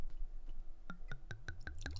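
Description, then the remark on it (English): Wine from a 2021 bottle glugs into a glass in a quick, steady series of hollow gulping pulses that speed up slightly, soft, with no talking over it. “All right, wine pour.”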